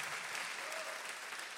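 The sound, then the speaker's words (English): An audience claps steadily, a dense, even wash of many hands with no pauses, fairly loud throughout and no voices standing out. “Come on, clap if you're excited that you already have.”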